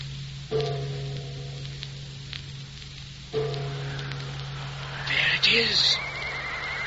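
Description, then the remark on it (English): A horse neighs once, a shrill, quavering whinny that rises and then falls away, heard over a steady low hum and a soft patter of hiss-like noise. “It is. Horse!”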